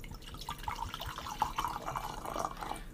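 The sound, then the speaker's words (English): Liquid pours steadily into a glass, a bubbling, gurgling trickle with small drips that lasts a few seconds, moderately quiet, with no voices. “Pour it up. Port up.”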